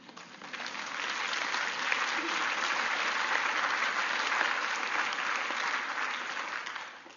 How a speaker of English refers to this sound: You should be clapping right now.